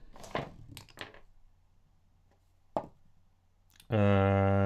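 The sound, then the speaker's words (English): Percentile dice clatter and tumble across a tabletop in a quick burst of clicks, with one more click a moment later, before a loud, steady electronic tone cuts in at the end. “So roll percentile dice.”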